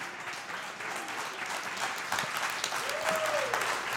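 A crowd applauds with steady, dense clapping that holds at an even loudness for the whole stretch, a brief whistle rising through it near the end.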